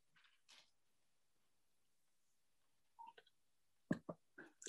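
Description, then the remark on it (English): Someone sips water, with a couple of soft slurps, a pause, then a cluster of wet gulping and swallowing noises near the end. “As I sip my water.”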